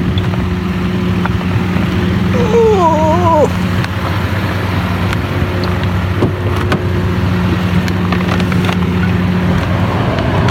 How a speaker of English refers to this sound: The familiar sound from outside of the car of the air conditioning running.